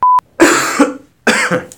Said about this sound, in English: I'm trying to find a good spot where I can actually breathe and not have to cough so you can actually get a good train of thought going.